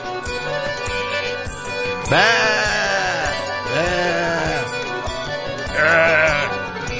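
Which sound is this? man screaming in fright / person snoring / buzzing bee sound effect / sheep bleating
sheep bleating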